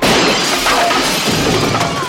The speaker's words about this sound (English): And that's when a chair goes through the patio door.